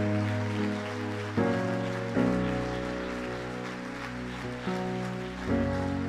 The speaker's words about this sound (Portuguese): Vamos ficar de pé para aplaudir ao Senhor, porque Ele merece toda adoração e toda glória e todo louvor. Aplauda ao Senhor. Aplauda ao Senhor, porque Ele é digno de honra.